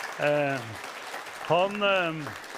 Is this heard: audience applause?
yes